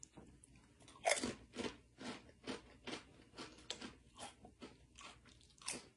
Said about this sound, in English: So maybe it's a dill flavoring of some sort. But yeah, check that out. You can see the little flavoring right there. And a nice crunchy chip.